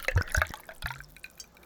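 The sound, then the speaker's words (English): Patron tequila pours from a shot glass held in a man's mouth in a few quick, wet splashes and drips, fairly quiet, followed by a soft trickle with no one speaking. “Taking the shot glass into his mouth, he pours over his.”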